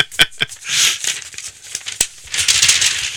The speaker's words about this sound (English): Paper. That's paper sleeve.